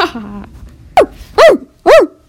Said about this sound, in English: It's Dorothy's dog.